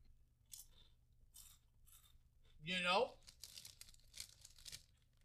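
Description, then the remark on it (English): Crisp crunching of thick ridged potato chips being taste-tested, in a series of sharp bursts, with a brief voiced sound rising in the middle between bites. “You know, I'm willing to go out on a limb and say that this does, in fact, have two times the crunch.”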